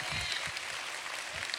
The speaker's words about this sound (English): Come on, can you give him a hand clap in here?